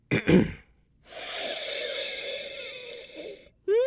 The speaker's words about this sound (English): And as always, our proper tasting technique begins with the sniff. So listen up. We're going to do a sniff of this Obscura Petite Sirah.